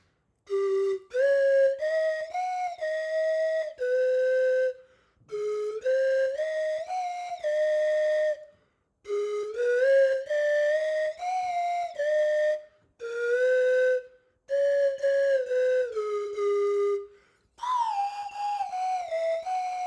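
A slide whistle plays a bright, breathy tune in five short phrases separated by brief pauses, its pitch sliding up and down between notes. It is fairly loud, with no talking.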